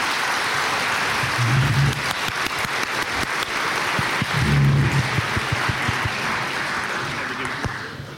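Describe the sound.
Sustained applause from a crowd as a quiz winner comes up to collect a prize, a dense steady patter of clapping lasting the whole stretch, with a couple of brief low voice-like murmurs rising through it and cheering mixed in.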